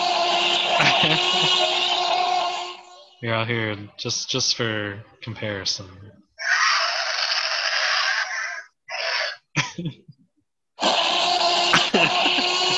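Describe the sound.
People imitate a T-Rex roar with their voices: three long, harsh, breathy roars, each lasting a few seconds, fairly loud, with short bursts of talking in between.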